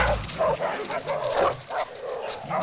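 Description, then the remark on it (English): A hunting pack of five dogs, named Trumpetta, Mimosa, Clariana, Durena and Champagne, bark together as they are let loose on a hunt, in overlapping bursts, a lively chorus of yaps and bow-wows repeating every half second or so, loud. “His pack consists of only 5 dogs named Trumpetta, Mimosa, Clariana, Durena, Champagne, come here!”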